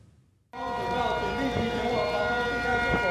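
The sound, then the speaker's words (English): Air raid sirens wail steadily across Taipei City, Taiwan, during the annual Han Kuang air raid drills on a Monday, a sustained layered drone of overlapping tones that starts abruptly after a brief silence and fills the space loudly with an echoing quality. “Air sirens rang out across Taipei City.”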